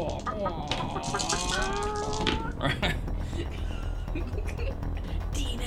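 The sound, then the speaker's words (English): Chickens in the bushes cluck in a burst of short, overlapping calls during the first couple of seconds, then fade into a steady, rustling background hiss. “Chickens.”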